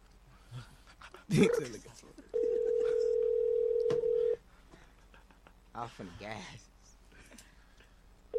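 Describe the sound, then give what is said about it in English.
A telephone dial tone, as a prank call is being placed, hums steadily for about two seconds, loud and unbroken, after a brief squealing yelp. Voices talk before and after it. “Hey, can we do a prank call real quick?”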